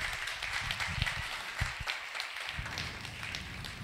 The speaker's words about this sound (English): God is so good. Give him a round of applause this morning. Come on.